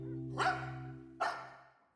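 puppies barking

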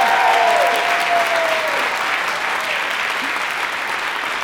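audience round of applause

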